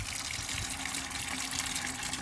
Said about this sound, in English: Let's fill a bucket with water and we'll wash them all to see exactly what we found.